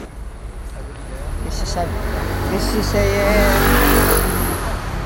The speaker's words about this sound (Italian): Il rumore della strada, c'è un bel po' di casino. C'è una musica che viene da una macchina.